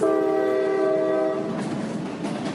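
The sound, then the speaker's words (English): A loud, sustained train horn blares for over a second, then fades into the steady rumble and rattle of a passing train. “Every day he got on a train and took it a long way to school.”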